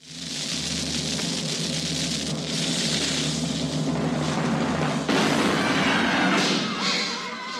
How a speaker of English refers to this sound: Fire the cannon.